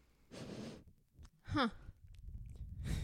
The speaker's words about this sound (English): I'm sure you'll pick up me sniffing my mic.